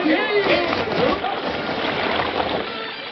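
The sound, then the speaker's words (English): A rowboat with its crew pushes off and heads offshore toward the ship Virginia Belle. The oars splash and churn the water in a steady, fairly loud wash for a few seconds, with faint muffled voices at the start. “was offshore with his crew bending to the oars”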